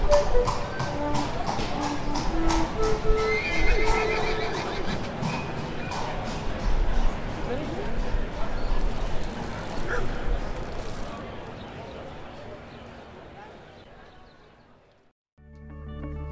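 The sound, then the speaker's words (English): A bustling town square scene with horses' hooves clip-clopping, a faint dog bark and a dense murmur of crowd chatter, steady throughout before dropping away near the end. “There is a short melody of a flute followed by a bustling town square environment with dogs and horses.”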